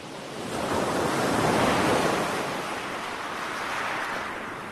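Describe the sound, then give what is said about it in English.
Ocean waves at Shale Bay on the Isle of Wight break and wash steadily onto the shore, a broad continuous rush of surf that swells and recedes, moderately loud, with no voices. “To start this episode, I thought we would take a brief dip into the relaxing waves of Shale Bay on the Isle of Wight, a recording recently shared by the British Library Sound Archive team, to bring a little comfort to those unable to visit the coast”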